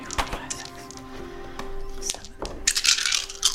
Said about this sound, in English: So roll 7 dice for damage.